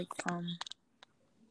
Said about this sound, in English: Oh, are you typing? Me? Yeah. No. What? I hear like a typing sound. I'm not typing anything.